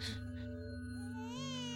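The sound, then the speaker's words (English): An infant creature cocooned in a sturdy violet crystal wails in one continuous, tonal cry, fairly loud, its pitch wavering and then climbing in a strained rise near the end. No one speaks. “Listen to the creature's cries, Sir Tristan. It is an infant”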